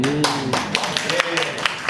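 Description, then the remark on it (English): A short burst of clapping, quick sharp claps in a loose steady rhythm from what sounds like a small group, with a voice humming or calling out underneath. “Everyone, round of applause.”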